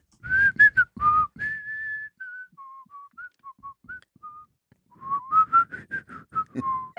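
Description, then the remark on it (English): A person whistles a short, wandering melody, with breathy, choppy notes at the start and end and a softer run of sustained, gliding tones in between. “He's also a real good whistler.”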